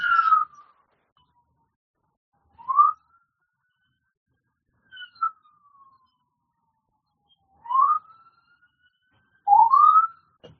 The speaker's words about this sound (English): So I feel obligated to speak difficult truths, and I'll wait till the siren passes.